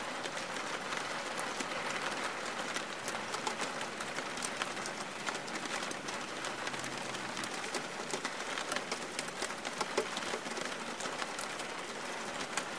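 Steady rain falls continuously, a dense hiss scattered with countless small patters and drips, evenly loud throughout with no voices or other sounds.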